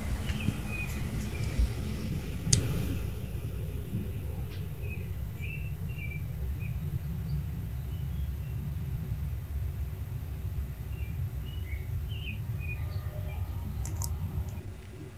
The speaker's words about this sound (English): So that one's a lot quieter. A lot quieter. But American Robin is the only thing I picked up in there.